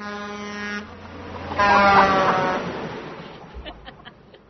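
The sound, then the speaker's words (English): A car horn, sounded by a woman at her car at a library, honks twice: a short blast, a brief pause, then a louder, longer honk that trails off into faint background noise. “And she pulls in, and then she finds out, and then she's so gosh darn mad that she gets out to the car, and she hits her horn.”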